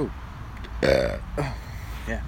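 A loud, drawn-out burp rises near the middle, followed by a shorter second belch and a faint vocal trailing sound against a low background hum.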